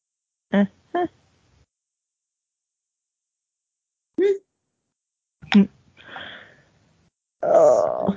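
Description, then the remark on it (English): A few short vocal grunts and a breathy exhale from a sleepy person lead into a loud, drawn-out yawn with a groaning voice near the end and no clear words. “Sorry, as I yawned.”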